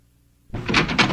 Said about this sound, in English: I'm sorry, I just walked back into the room. Hit the door.